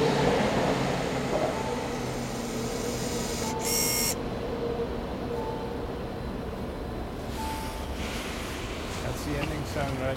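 train passing by

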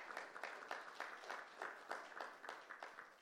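audience applause

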